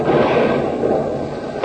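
A thrown grenade blast rolls out as a loud, steady roar of harsh, crackling noise that holds for over a second, then ends with a brief sharp crack.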